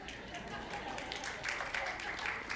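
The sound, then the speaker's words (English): A crowd claps politely and steadily for a couple of seconds for visitors from Oregon, a soft, even patter of many hands without cheering, slightly brighter toward the end. “And they clapped for you. It was polite clapping, but it was clapping nonetheless.”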